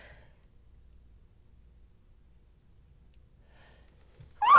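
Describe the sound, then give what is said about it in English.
A sneeze bursts out loudly and suddenly at the very end, after a long quiet stretch with a faint low hum and a couple of soft breaths. “Hang on, I'm going to sneeze.”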